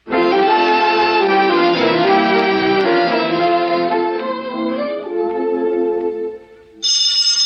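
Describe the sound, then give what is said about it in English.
In a radio play scene set in Alexander Graham Bell's attic laboratory in Massachusetts in 1870, sustained orchestral-style music plays, fades slightly, then a loud, bright telephone bell abruptly starts ringing at the very end, a brief metallic burst cutting in after the music. “I'll take it. Hello? Alexander Graham Bell's residence.”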